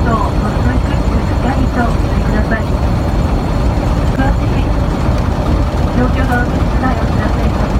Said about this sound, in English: because it kind of jumps to this segment where the flight attendant is making a PA, telling people not to freak out, not to panic. Yeah, please stop shaking the airplane. Yeah, the airplane is shaking pretty violently.